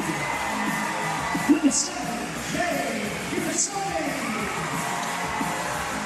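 A dense arena crowd in Canberra cheers in a steady, roaring wash as the Caps team comes out onto the floor, led by captain Jay Melbourne, with a couple of sharp, high whoops or whistles cutting through early on and again midway.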